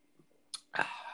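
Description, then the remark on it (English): A quiet sip of a drink: a soft wet slurp, then a louder, sustained breathy exhale like a satisfied sigh right after drinking. “I'm just going to have a little sip here.”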